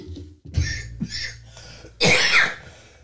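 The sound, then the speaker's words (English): Three or four harsh coughs, irregularly spaced, the last one the loudest and longest, from a man coughing with a cold. No one speaks. “Aw, poor guy is still coughing with a cold.”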